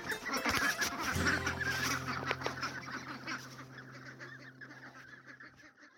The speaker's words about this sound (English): These are my ducks.